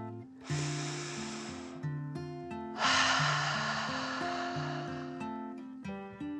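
A long, deep breath drawn in, a short pause, then a longer airy exhale, loud and breathy over a gentle melodic music background with no talking.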